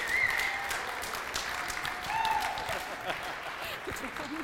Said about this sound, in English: Round of applause.